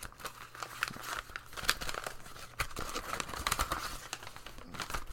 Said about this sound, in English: Okay, there's something wrapped up in a piece of paper here. With some tape. Let me get this open.